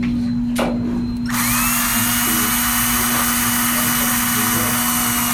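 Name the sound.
power drill drilling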